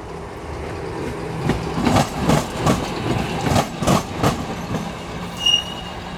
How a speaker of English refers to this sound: And a little Ybor City rooster to punctuate the event. You know, that makes me so happy. There's nothing like an antique electric streetcar crossing another pair of tracks.